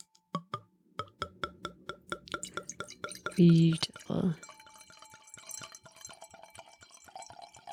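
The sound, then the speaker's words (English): Wine pours into a glass: a run of quick drips and light taps, then a louder gurgling splash, followed by a soft rising ring from the filling glass. “I'll try to get that sound.”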